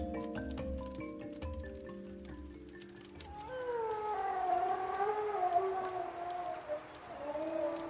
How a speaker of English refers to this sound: Wolves. They must be nearby. Don't worry, they never really attack people.